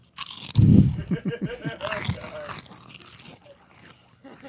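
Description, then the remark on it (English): Loud, close crunching of food, a burst of crisp bites and chewing right against the microphone, fading into softer scraping mouth noises. “I know that's going to be funnier at home because we're crunching in the into microphones.”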